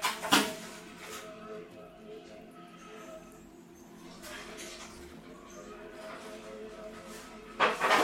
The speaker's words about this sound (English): And I'm gonna close the door a little bit for a bit.